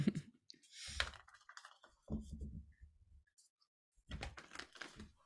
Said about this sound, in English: So as I step into your energy and shuffle the cards, I do feel a bit of forward movement.